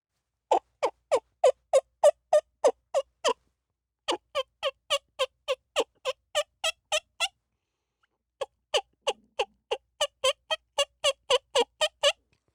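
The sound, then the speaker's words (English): A turkey call blown on a mouth call: three runs of rapid, evenly spaced yelps, each a sharp raspy note, with short pauses between the series. Moderately loud, no talking. “Here's how one mouth call sounds.”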